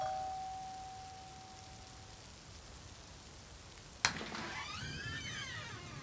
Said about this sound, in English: With a deep sigh, he stepped up onto the front porch and rang the doorbell.